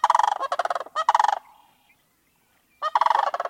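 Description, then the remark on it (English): A sandhill crane gives loud, rolling, rattling bugle calls in three bursts, with a short gap and a longer pause before the last one. The calls are clear, with no voices. “There were increases in the populations of birds that use woodlands and wetlands, including the charismatic sandhill crane.”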